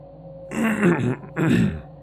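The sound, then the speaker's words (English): A person quietly clears their throat twice in quick succession, two short, rough, muffled bursts with a brief pause between them and no talking. “It was all Louis could do to quietly clear his throat.”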